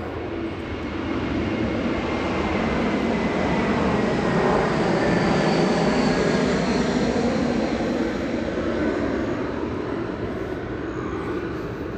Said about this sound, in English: Just letting another biker and airplane go by.